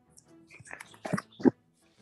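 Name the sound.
dog whining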